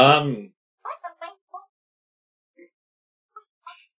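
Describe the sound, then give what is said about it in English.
A cat in the distance lets out a loud, drawn-out meow, followed by a few short, quieter chirps and scattered faint sounds. “Cat voice in the distance.”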